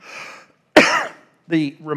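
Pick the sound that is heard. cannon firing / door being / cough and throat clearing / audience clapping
cough and throat clearing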